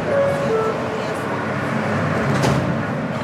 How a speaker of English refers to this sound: So I went on the train